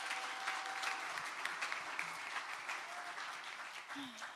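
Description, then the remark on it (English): An audience breaks into steady, dense applause for the afternoon workshop leaders, many hands clapping at a fairly even loudness for about four seconds, with a faint cheer or two mixed into the clatter. “Can we give it up for our afternoon workshop leaders?”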